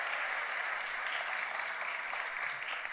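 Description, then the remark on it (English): Steady audience applause at a youth pastor's gathering fills the whole stretch, a round of applause for prize contestants: a dense, even wash of many hands clapping at moderate loudness with no voices standing out. “Round of applause for my ladies.”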